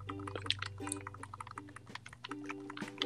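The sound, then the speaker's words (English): Rapid, irregular clicking of game controller buttons, a flurry of sharp little taps over a low steady hum and faint sustained tones, with no talking. “That's a lot of controller clicking for no reason.”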